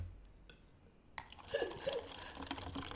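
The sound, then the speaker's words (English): After a second of near silence, liquid starts pouring and splashing into a ceramic cup, a steady rush with a few bubbling, gurgling drips through the middle, continuing to the end. “Oh my god. You have splash, bro.”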